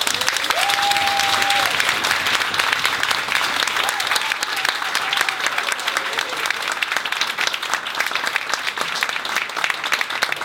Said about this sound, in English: But before I actually start, can I just get one huge round of applause for everyone involved in this amazing charity.